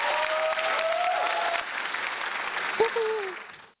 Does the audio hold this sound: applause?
yes